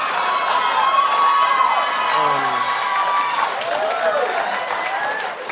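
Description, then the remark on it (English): Loud, steady applause from a crowd, a dense wash of clapping held for several seconds, with excited voices and shouts rising through it and easing slightly at the end. “See, that just looks like regular applause.”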